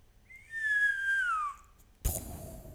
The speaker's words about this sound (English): So yeah, wait, I heard someone whistle.